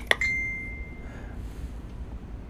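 A single bright, high-pitched chime from a phone message notification: a quick click-like strike, then a clear tone ringing out for about a second over faint low background noise.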